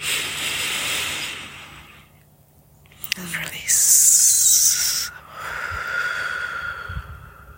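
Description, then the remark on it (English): Slow, deep breaths drawn in and let out, airy, a few long cycles separated by a brief quiet pause, with a louder rushing exhale in the middle. “in this beautiful lightness, breathing in the great mystery, breathing in, breathing in and expanding within.”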